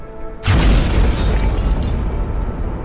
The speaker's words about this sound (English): There's been an explosion at the north wall. It's been breached.